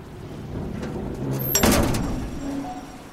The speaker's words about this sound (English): The heavy metal doors slam shut with a deafening clang behind Clyde Barrow.